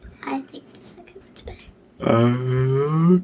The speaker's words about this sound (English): I yawned. I'm tired.